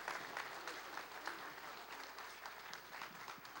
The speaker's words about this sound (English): All right, give these folks one more round of applause.